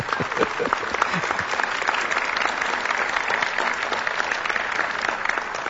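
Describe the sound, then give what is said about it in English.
Steady applause from an audience fills the whole stretch, a dense, continuous patter of many hands clapping, with a faint voice or two mixed underneath, as the speaker's wife is asked up to join him. “Did they applaud when I came up?”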